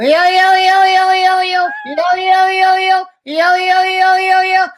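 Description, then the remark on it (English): A person imitates a cat for Tom Papa, who loves the cat noise, with three long, loud, sustained meows, each a steady harmonic wail, separated by brief pauses, with no other talk. “I know you love the cat noise, and this is for you, buddy.”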